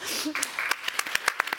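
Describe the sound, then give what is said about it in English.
A small audience at IGN's weekly PlayStation show clapping because a guest likes anime: a string of sharp, bright claps at uneven intervals, fairly loud, after a brief murmur of voices at the start. “They're clapping because you like anime.”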